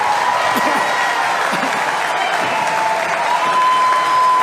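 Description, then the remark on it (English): A crowd applauds steadily, a dense wash of clapping that stays loud and even for several seconds, with a few faint voices mixed in beneath it. “Such a low standard that takes applause, you know?”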